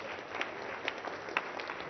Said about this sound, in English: All right, shall we all stand? Shall we all stand? Let's give a clap offering to Jesus, if that is true.